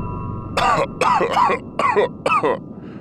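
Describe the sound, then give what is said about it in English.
A spaceship coughs as it comes back online: a series of four or five raspy coughs and throat clears in close succession, loud, with a rough rhythmic pattern and no speech. “Why am I coughing?”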